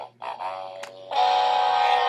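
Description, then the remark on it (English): A short, silly musical sting plays as the cue for the Dum Dum Award of the Day: a few bright, bouncy tonal notes with a buzzy, toy-like timbre, ending on a louder sustained chord, with no talking over it. “All right, we're going to go ahead and give the Dum Dum Award of the Day today, so let's cue that dummy music, shall we?”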